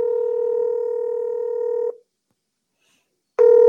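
An outgoing call's ringback tone: a steady electronic buzz lasts about two seconds, falls silent for over a second, then starts again. It's clear, with no voices.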